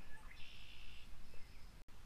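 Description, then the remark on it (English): Faint birdsong drifts through a quiet outdoor ambience, with a few soft chirps and a thin, sustained high trill, and no voices. “The frogs, the birds, the trees.”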